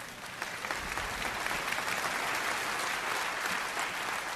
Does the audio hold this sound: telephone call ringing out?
no